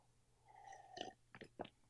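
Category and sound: food or drink, sipping coffee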